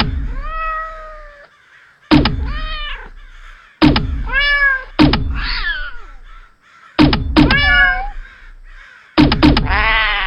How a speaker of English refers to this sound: Oh, this old thing? It's not a gun. It's a cat launcher!